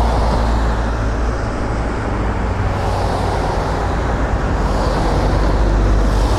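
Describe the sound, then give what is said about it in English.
A car drives past on a street with double yellow lines down the middle, a loud, steady rush of engine and tire noise with a deep rumble underneath, filling the whole moment with no voices. “Every time a car goes by, the draft from the car makes the fur on his coat ripple wildly like tall grass on the prairie.”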